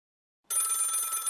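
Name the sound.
old-fashioned telephone bell ringing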